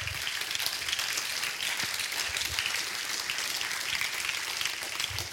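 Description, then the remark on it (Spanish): A crowd claps together in steady, dense applause for the Lord, a continuous crackling wash of many hands at an even volume for several seconds, with no voices standing out. “Un aplauso ahí al Señor.”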